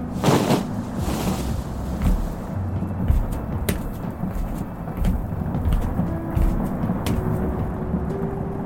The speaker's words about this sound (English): The fury of the storm was unnatural.